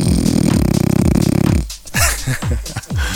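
A loud, rattling, buzzing snore drones for over a second, then breaks into several short snorts and snuffling grunts, with no talking.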